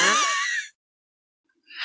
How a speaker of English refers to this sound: Oliver is in the house listening to her scream like a cartoon character.